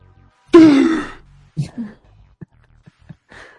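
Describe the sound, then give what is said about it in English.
A sudden, loud gasping intake of breath from someone who has been holding their breath, with a strained voiced edge, trailing off over half a second, followed by a few soft breathy sounds and small clicks. “The like finally emerging from a thing and taking that gasp of air.”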